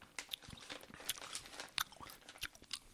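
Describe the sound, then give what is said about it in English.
Chewing of a dry, fibrous snack, shredded dried squid: repeated moist crunches and sticky bites in an uneven rhythm, with no talking. “I'm getting these flashbacks of the Jack Link's jerky chew.”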